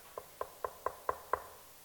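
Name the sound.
knocking on a door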